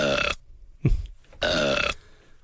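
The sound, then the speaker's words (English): Two loud, drawn-out, croaky burps separated by a short pause with a low thud in between; no talking alongside them. “if you could have a gift, would you rather have a bottle of delicious whiskey that would never get empty, or a button that could make Piers Morgan burp at any time?”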